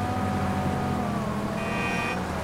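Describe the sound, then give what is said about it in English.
Steady, droning rumble of car traffic with a low engine hum throughout, continuous, and a brief thin whine rising above it near the end. No one speaks. “I'm running into traffic, gonna get hit.”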